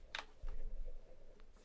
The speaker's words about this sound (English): Gotta make sure I'm still recording here because my cat just stepped on the keyboard.